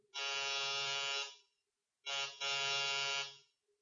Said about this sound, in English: Press the buzzer.